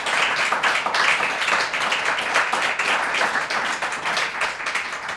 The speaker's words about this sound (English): So let's give another round of applause.